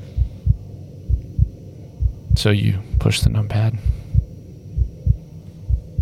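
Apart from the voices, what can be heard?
heartbeat sound effect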